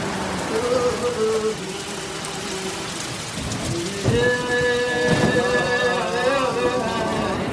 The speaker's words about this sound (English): Wow, that's quite a rain.